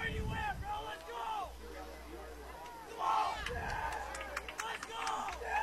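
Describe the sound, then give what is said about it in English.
A player on the Central sideline gives loud, hoarse shouts of "let's go" toward the crowd, several strained yells in bursts over a noisy stadium crowd with a steady low rumble beneath, with 7:22 left as Valley Catholic leads 48-26. “Player on the Central sideline screaming towards the crowd, let's go.”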